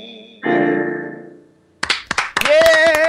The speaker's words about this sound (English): give her like a round of applause or something. There you go. That was awesome.